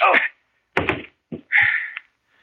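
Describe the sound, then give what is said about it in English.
A single heavy, dull punch thud knocks a man out, landing between short strained grunts and a drawn-out groan from the man, with brief silences separating each sound. “Well, I knocked you out”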